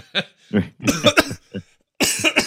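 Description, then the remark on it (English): Someone chokes while laughing at a joke: a run of harsh, sputtering coughs comes in quick bursts with short gaps, ending in a loud, raspy cluster, like someone choking and gasping for air. No speech is heard. “I'm gonna choke on my own self”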